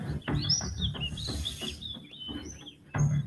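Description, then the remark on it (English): Birds chirp and tweet in quick, high-pitched bursts over a steady low background rumble, the calls repeating irregularly. “Birds chirping.”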